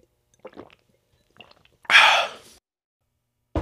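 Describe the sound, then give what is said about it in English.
A few short, wet gulps of a thick, chocolate-tasting drink downed all at once, then a loud, breathy gasp of air right after swallowing, otherwise quiet. “I don't think you're supposed to drink it all at once.”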